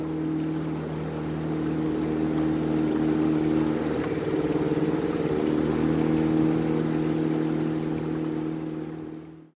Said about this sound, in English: Across the stream, Arthur Smith and Joseph DeLu launched a small motorboat to assist with the search.